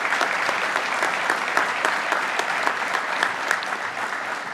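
Steady audience applause honoring members of a disaster spiritual care team, a dense wash of many hands clapping at an even, sustained level for several seconds, with no voices standing out above it.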